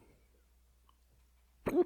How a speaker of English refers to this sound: Oh, there we go. Along with my endless fucking hiccups. Does not stop.